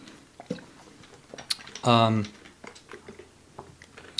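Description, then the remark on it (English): Sipping and swallowing water: scattered small wet clicks and gulps, broken midway by a brief voiced sigh, all quiet. “Cool, well, I'll use it to drink water too.”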